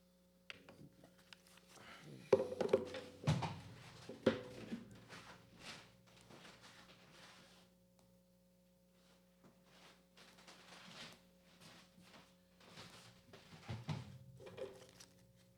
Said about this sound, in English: Yeah, so that sounded like a fort. It wasn't a fort, it was just me sliding a chair over.